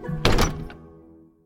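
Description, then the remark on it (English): A door opens and shuts with a solid thunk, followed by a quick latch click and a short ringing decay that fades out within a second. No voices. “I grabbed the handle, felt the weight of the orb in my pocket, opened the door, and stepped through.”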